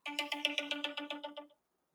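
A phone ringtone, played as makeshift outro music, sounds as a fast, buzzy electronic trill of about a dozen evenly spaced pulses, loud, then stops abruptly into silence.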